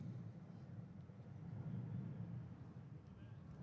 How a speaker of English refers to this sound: You hear that plane? So do I.